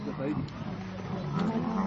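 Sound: lions roaring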